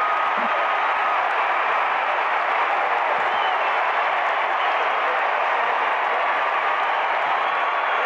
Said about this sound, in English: Crowd. Crowd is still on their feet.